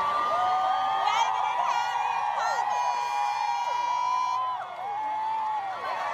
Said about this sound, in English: Please turn down the volume because you'll hear me screaming that Meghan and Harry are coming